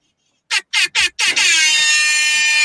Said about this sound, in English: And the air horns, that's made my day. Yeah, I had to get it ready for you. I had to bring you out with that energy.